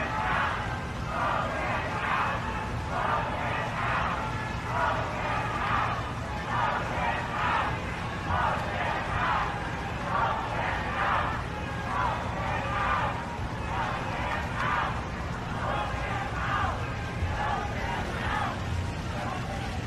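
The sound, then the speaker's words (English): A large crowd of attendees at a memorial service for Ruth Bader Ginsburg shouts loudly in a steady, repeated rhythm, like a chant, over a constant low rumble of noise. The voices merge into one sustained mass rather than standing out individually. “Can't you just feel it from the crowd?”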